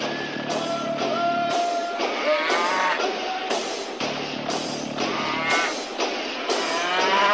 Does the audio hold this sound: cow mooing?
yes